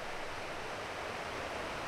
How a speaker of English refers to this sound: There are waterfalls all over the place, pouring down from mountains all around me.